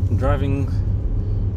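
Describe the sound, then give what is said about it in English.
Steady low rumble of road noise from inside a moving car, a mother's car being driven home, constant throughout, with a brief burst of a voice near the start riding over the drone. “Driving my mum's car home.”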